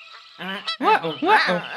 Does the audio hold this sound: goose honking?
yes